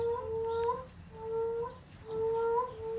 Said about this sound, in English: I love the sound of moaning frogs.